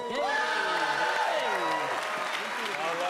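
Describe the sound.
A home crowd applauds and cheers steadily throughout, with voices whooping over dense clapping that stays loud and even for the full few seconds.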